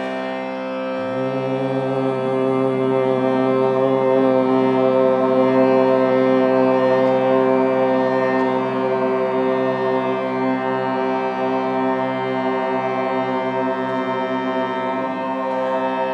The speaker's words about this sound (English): Color, mantra, LAM. Nice and loud when we first chant so they can. Big breath in, we'll just hum it the first time. Breath in.